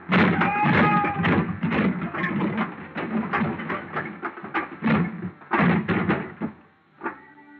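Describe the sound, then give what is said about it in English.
A heavy, empty dolly crashes into the bottom box of a high pile of wooden shipping boxes: a loud, jumbled crash of toppling boxes, a dense run of clattering knocks and thuds that keeps tumbling for several seconds before a last bump and a brief ringing tone. “I grabbed a heavy, empty dolly, gave it a flying start, sent it crashing into the bottom box of the pile.”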